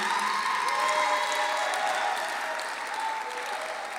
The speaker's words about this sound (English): Come on, put your hands together. Let's do it better. Let's give a better clap offering to living ladies.